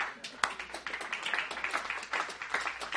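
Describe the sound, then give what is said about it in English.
A speaker claps for himself, a quick, steady run of hand claps for about three seconds, soft overall, with one sharper, louder clap near the start and no voices over it. “I'll clap myself.”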